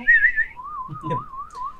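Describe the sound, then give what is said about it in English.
Someone whistles to summon a mount: a short, bright high note, then a long, steady lower whistle that gently wavers in pitch. A brief rustling burst sounds partway through. “Bonus action but summon. Yeah, as you kind of like Gandalf whistle.”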